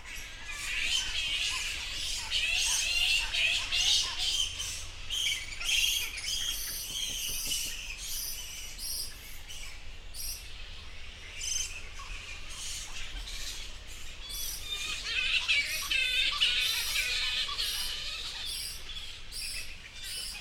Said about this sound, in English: Yes, it's a bat. And remember the clue, Eden, that they come out at night time.